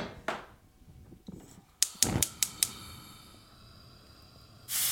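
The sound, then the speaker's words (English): A burger sizzles in a hot pan: a steady, quiet hiss with a quick run of sharp pops and crackles near the middle, then a sudden louder burst of frying noise at the end. “That's a real sizzle.”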